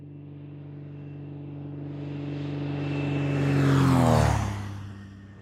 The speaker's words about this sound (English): In the summertime, the large hangar is full of small planes, and on this spring afternoon, before the trees had begun sprouting and the wind was still cold, a plane took off, circled, and flew low overhead.